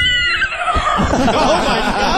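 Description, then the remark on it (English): A person does a loud imitation of a horse whinny, a shrill, quavering neigh that wobbles in pitch for about two seconds. “Hold on, do the horse noise.”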